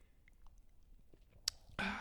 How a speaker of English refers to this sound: Did you take a little sippy sip?